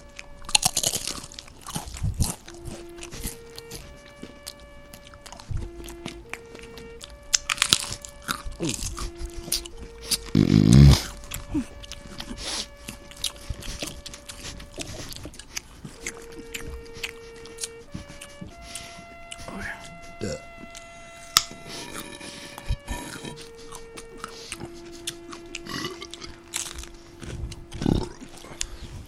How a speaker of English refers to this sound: Fans, in light of recent events in Seattle, we ask you at this moment to stand, remove your hats, and join us as we pay our respects to Siggy Schmidt with a moment of eating.